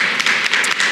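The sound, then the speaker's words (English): A burst of steady applause from a group for mothers at a Mother's Day celebration, many hands clapping together in a dense, even patter that fills the whole moment with no voices over it. “Let's give them a round of applause to our moms.”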